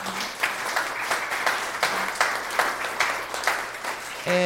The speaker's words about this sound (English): Well, I think it's time for us to open the floor to questions, but first I want to give a big thank you and hear a warm round of applause for Mary Kay Magistad and for Gadi Epstein.